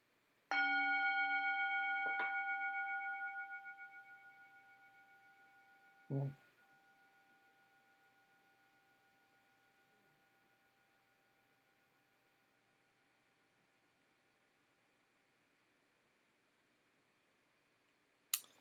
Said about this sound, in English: but no matter what happens with that, I get to ring this bell for doing it. And that's something I'm proud of.